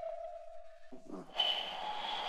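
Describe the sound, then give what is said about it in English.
A Beijing pigeon whistle hums in flight, air filling its gourd (cucurbit) vessel and resonating: a steady mid-pitched tone for about a second, a brief wavering break, then a louder, brighter chord of high and middle tones that holds to the end. “Air fills the cucurbit vessel and resonates to create its distinctive sound.”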